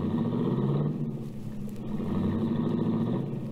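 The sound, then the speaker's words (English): The engine of a baby blue, foreign, right-hand-drive convertible car rumbles steadily, a low continuous drone that holds fairly even for a few seconds as the car pulls out into traffic, with no voices. “I watched Cookie's baby blue convertible cut out into the traffic.”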